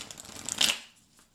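A quick riffle of a deck of cards being shuffled, a brisk papery flutter that peaks sharply near the end and then stops, with no talking.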